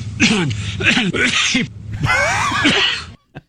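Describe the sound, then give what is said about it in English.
A man clears his throat over and over in quick, rough bursts, then a longer strained, raspy clearing, loud, with a brief click at the very end; it is throat clearing, not coughing. “And a lot of that's clearing his throat. That's not coughing, per se.”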